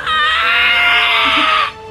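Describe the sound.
A creature screams in pain after stepping into a moonbeam: a single loud, shrill, unearthly scream, sustained and harshly warbling for over a second before cutting off abruptly, heard alone with no talking.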